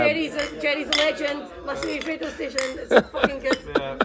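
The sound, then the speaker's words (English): Several sharp glassy clinks ring out at irregular moments, like glasses touched together in a toast, with indistinct voices murmuring underneath throughout. “I'm going to cheers myself.”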